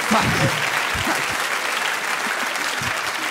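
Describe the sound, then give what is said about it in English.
Steady audience applause fills the whole stretch, a dense, even patter of many hands clapping at a consistent loudness with a few low murmurs underneath. “What an odd thing to applaud that is.”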